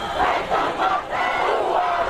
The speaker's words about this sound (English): From the outset, the message was unmistakable. A cry, a rumble, an almighty roar from the Treaty Grounds.